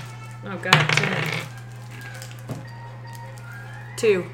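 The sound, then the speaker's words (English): Dice rolled for attack checks clatter briefly across a hard tabletop, a quick rattling burst that settles within a second, followed by a few faint knocks over a low steady hum. “You roll, and you roll for attack checks, please.”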